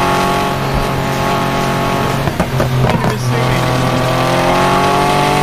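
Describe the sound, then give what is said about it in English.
A loud, steady engine drone from a speeding car in a video game, with a burst of rushing, shifting noise around the middle as the car goes past a police car, then the engine hum carries on. “I just went by a cop car. I don't even know how fast.”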